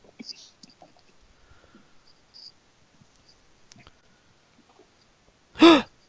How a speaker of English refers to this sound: We're going to get an audible gasp, I would guess.